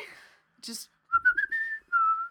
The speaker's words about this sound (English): I've been whistling it all week. Like, obnoxiously. Like, on the way over.